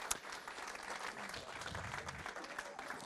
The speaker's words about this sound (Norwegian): Tusen hjertelig takk til det er faktisk en familie her som har stått for disse to. Jeg synes vi skal gi dem en ekstra applaus her nå